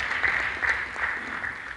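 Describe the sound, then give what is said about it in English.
An audience claps steadily for a woman for a couple of seconds, a dense patter of many hands with small swells in loudness, and no voices rising above it. “Clap for her, please.”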